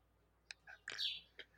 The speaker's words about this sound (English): Is there a bird? There's probably birds outside. Oh, okay. Yeah. I guess I'll go close my window.